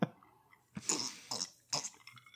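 Three short, wet slurping sips of scotch, each a quick airy burst separated by brief pauses, with no talking.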